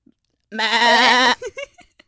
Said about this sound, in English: Literal sheep.